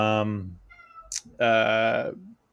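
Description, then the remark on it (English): A cat meows twice, loud: a short cry, a brief pause with a soft click, then a longer, drawn-out meow that fades at the end. “I hear some cats meowing in the background.”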